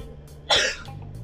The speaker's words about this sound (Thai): จามจริงๆด้วยนะครับ